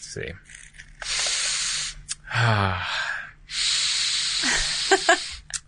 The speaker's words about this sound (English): Okay, so I'm going to hand you a book. All right. And I want you to sniff the book and tell me what it smells like.